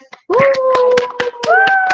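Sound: clapping and cheering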